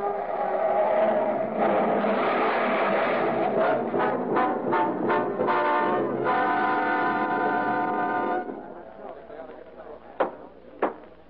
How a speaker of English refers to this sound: With an unconscious man at the wheel, the car glides downward. At the bottom of the grade, a traffic light blinks red at a crossroad. Car hurtles toward it, faster and faster, then swerves madly into the cross traffic.